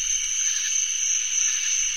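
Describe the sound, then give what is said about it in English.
A dense chorus of a great number of tree crickets of different species, each singing differently, trilling together into a steady, high-pitched, shimmering drone that holds at constant loudness throughout, with no voices. “And then there's sort of a loud trill continuous background which is made by a great number of tree crickets of different species that are singing differently, but to us it just sounds like one fairly musical din.”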